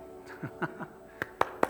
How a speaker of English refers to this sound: Yeah, you can clap if you want. Thank you, Lord. Thank you, Lord. I'll clap if I'm the only one in this room.